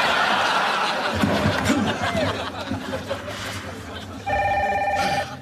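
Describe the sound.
Over a murmur of talk and audience laughter, a telephone suddenly starts ringing near the end: a loud, steady electronic trill that holds for about a second.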